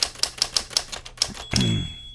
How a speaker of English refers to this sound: Speaking of which, let's get out our very aggressive typewriter here. We're going to get in some headlines, folks.